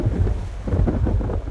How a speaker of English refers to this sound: To the east, a heavy rumble of thunder matched his feelings on the subject.